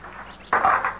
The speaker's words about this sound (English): One of the dice. It broke in two. Yes, there's no reading the number.